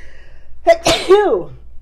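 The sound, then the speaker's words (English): A single sneeze during allergy season: a quick inhaled catch, then a sharp, loud burst of breath trailing off into a brief voiced tail, heard on its own with no talking. “And it's allergy season, so bear with me. There might be another sneeze or two.”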